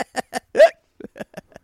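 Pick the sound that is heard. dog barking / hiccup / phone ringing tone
hiccup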